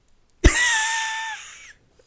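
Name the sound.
cough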